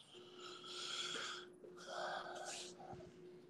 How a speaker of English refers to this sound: You sound like you're over there breathing heavy.